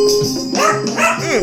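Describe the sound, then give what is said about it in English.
A few sharp, yelping dog barks ring out over a steady musical backing, coming in quick bursts with a whiny, rising-and-falling pitch. “Got the dog barking and shit.”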